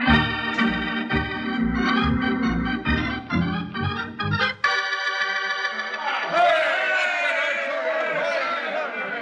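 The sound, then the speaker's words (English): A rowdy crowd gathered outside, many voices shouting and hollering together, loud and continuous, building into an overlapping clamor of raised yells toward the end. “With that crowd out there, I figure I'll need them a lot worse than a highfalutin speech.”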